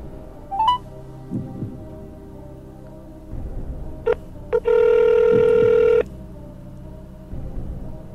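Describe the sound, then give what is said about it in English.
A phone call from a cell phone to a radio station, placed on speaker: a quick rising beep, two short chirps, then a steady buzzing ring tone lasting over a second, with dull low thumps throbbing in the background. “Call it on my cell phone.”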